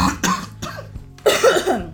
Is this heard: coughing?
yes